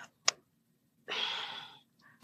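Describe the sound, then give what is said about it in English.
A single sneeze bursts out suddenly, a loud breathy rush of noise that tails off over about half a second. It is framed by a couple of short clicks and a faint breath. “Bless you.”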